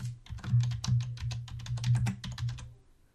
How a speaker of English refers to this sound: Furious typing. furious typing.